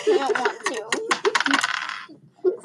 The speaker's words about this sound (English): you're gonna roll perception this time because you have a 4 perception as well. So roll the green dice.